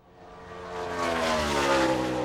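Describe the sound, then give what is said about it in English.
A car sound effect played from a soundboard button: an engine roars and revs upward, its whine climbing in pitch as it grows louder over about two seconds, like a vehicle accelerating past. No one speaks. “I'm going to hit the car button now.”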